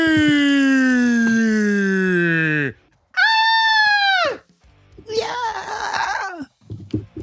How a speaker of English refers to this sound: Number 7. There is a scary sound of a broken TV not quite working.